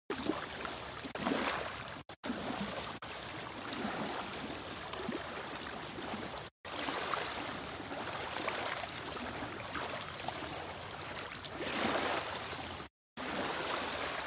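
Gentle ocean waves wash onto a beach in a steady, hissing rush, swelling and easing every few seconds, with a couple of brief silent breaks and no voices.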